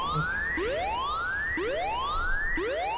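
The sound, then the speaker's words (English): A whooping alarm sound effect: a buzzy, harmonic tone sweeps upward in pitch, then cuts off and restarts, repeating about once a second for three cycles at steady loudness with no talking. “Oh, we gotta get that bullshit alarm going.”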